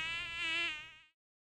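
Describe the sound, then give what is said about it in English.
A thin, high-pitched mosquito whine hovers for about a second, wavering slightly in pitch and loudness before cutting off abruptly into silence. “Colorado's high levels of summer rain have made it a good year for mosquitoes and a bad year for mosquito-borne diseases.”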